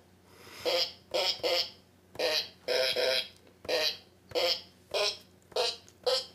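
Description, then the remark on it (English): A sequence of about a dozen short, buzzy fart sounds played on a fart piano in a steady rhythm like piano notes, forming a simple tune, the opening of a song. Loud, with no talking. “Played on the fart piano.”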